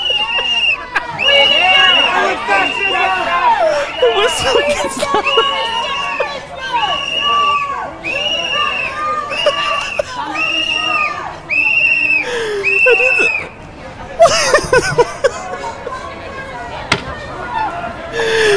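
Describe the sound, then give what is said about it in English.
Shrill whistles blow over and over in short repeated bursts, loud and piercing, interrupting a press conference, over a noisy crowd with voices and shouting underneath. “The intensity of the whistle.”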